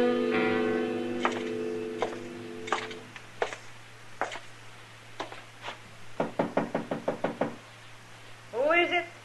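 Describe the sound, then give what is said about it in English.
Knocking on a wooden door: a few scattered knocks, then a fast, insistent run of about eight raps, fairly loud over a steady low hum, followed by a brief scraping rattle. “Open the door, Dillon.”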